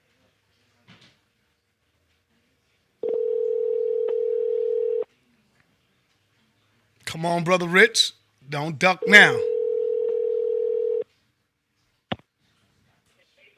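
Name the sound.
telephone ringing tone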